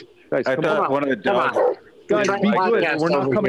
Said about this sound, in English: Uh-oh. Argument with dogs across the street.